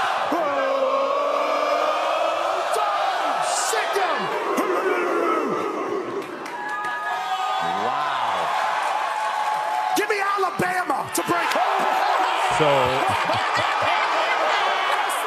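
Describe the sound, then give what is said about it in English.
A large crowd cheers and shouts continuously, many voices overlapping into a loud, dense roar, with occasional whoops and yells rising above the din throughout. “Before the pick, he gets the cheer, and then he picks Bama, where he was right, by the way.”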